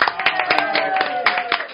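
A crowd gives a last round of applause at the end of a show, with dense, steady clapping, while a voice or cheer carries faintly above the hands throughout.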